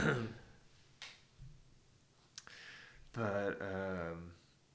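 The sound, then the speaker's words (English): A dog named Zula snoring: a few short breathy snorts, then a longer, louder rasping snore with a buzzy, low droning tone, and no talking over it. “I don't know if the mic's going to pick it up, but Zula is snoring because she's so bored by your self-depreciating humor.”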